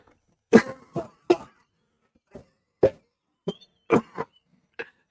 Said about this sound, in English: It'll cure your cough, maybe. No, it made me cough. It made me cough.